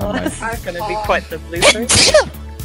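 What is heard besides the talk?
sneeze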